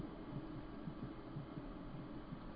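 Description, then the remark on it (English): Two heartbeats fade out, then a faint, rapid heartbeat thumps steadily in low, muffled pulses over a soft background hum, with no voices. “You know, this two heartbeats fade, and then very, very softly you can hear a very fast heartbeat.”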